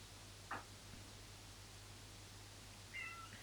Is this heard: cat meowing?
yes